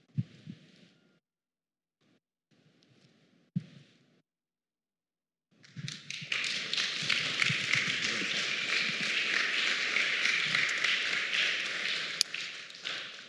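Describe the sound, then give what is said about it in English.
A few scattered claps and taps at first, then a crowd bursts into loud, sustained applause with a dense crackling texture that carries on steadily to the end. “Let's just pause for a moment, and I appreciate you clapping.”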